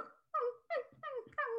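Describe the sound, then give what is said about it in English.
A person imitates a schnauzer's barking with a quick series of about five sharp, yappy barks in a steady rhythm, fairly loud, with no talking. “And that's like a schnauzer.”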